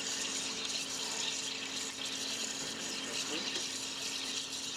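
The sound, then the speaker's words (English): Plain, clear water pours steadily into a machine for super-chilling and freezing water, a continuous rushing splash over a low, even motor hum that lasts the whole stretch without a break. “You put a thing of water in it.”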